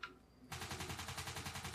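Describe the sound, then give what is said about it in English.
An MP40 submachine gun fires a steady, rapid burst of loud, sharp cracking shots that begins abruptly after a brief quiet moment and keeps going at an even rhythm with no voices. “Is that an MP40?”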